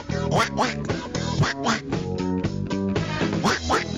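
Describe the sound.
A disco track plays loudly with a steady beat while a warbling, duck-like voice quacks and squawks over the music in short repeated bursts, a voice imitating a duck.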